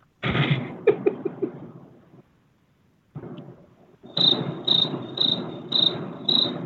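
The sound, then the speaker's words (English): A cricket chirps in a steady rhythm, five sharp, high chirps about half a second apart, following a brief rumbling, crackly burst of noise and a short pause. “Cricket.”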